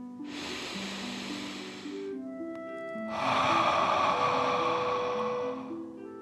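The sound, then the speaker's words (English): A long, airy breath drawn in through the nose, a short pause, then a louder, forceful whooshing exhale through the mouth, part of a guided deep-breathing exercise, with soft music sustaining in the background. “Breathing in through your nose and breathing fire out of your mouth. Again, deep breath in and out.”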